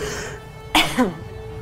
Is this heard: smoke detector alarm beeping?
no